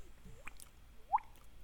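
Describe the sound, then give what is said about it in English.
A voice imitates water dripping with mouth clicks: two rising, hollow plinks about half a second apart, quiet, with no talking in between. “Love the drip. Yeah. Drip, drip, drip, drip, drip.”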